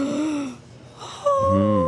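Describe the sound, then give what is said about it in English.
Someone mimics a big, exaggerated yawn, like a man yawning during a hymn: a breathy, moaning intake, a brief lull, then a loud, drawn-out groaning exhale that holds steady to the end. “And so they're doing the hymn, and he yawns.”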